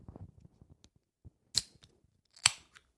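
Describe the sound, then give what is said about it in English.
A can of sparkling water cracks open: a few small metallic clicks, then two sharp, bright pops with a brief fizzy hiss, the second louder. No one speaks. “Here's a crisp sound of me opening. Okay. This, water.”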